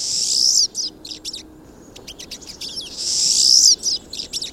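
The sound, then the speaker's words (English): Pine siskins calling: two drawn-out, rising buzzy wheezes, each followed by bursts of quick, thin twittering chips, fairly loud against a quiet background. “the dense groups of siskins can easily transmit diseases such as salmonellosis to each other and to other birds.”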